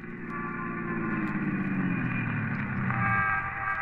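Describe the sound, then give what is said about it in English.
A police squad car engine drones steadily, a continuous low rumble with a faint whine that shifts slightly in pitch, as the car hurries along at speed. “We climbed into a squad car and hurried back to Barbara Carroll's apartment, where Jack Olson lived as a boarder.”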